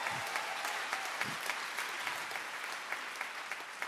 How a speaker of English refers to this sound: We should give her a little round of applause.